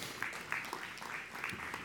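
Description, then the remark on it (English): Soft, steady applause from an audience clapping for about $4,500 given to six people with financial needs the previous weekend, a dense patter of many hands clapping at an even level throughout, with no voices standing out. “And beyond, on top of that, you can clap for that.”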